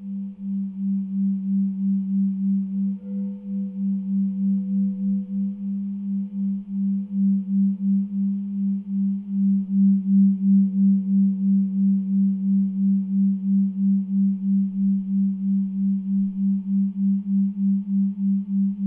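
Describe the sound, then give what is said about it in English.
A sustained, low sound bath tone hums steadily throughout, with a gentle rhythmic wobble pulsing through it and faint overtones above. It rings alone and moderately loud, with no voices. “I felt like certain tones were fine and other ones were like a little harder to stand.”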